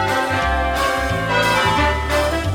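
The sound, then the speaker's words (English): Several church bells peal together in a dense, overlapping cascade, their rich metallic tones ringing loudly and continuously with strikes renewing every second or so. “Of course, it was church bells ringing.”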